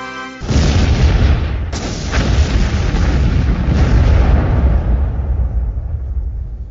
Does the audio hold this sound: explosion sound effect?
yes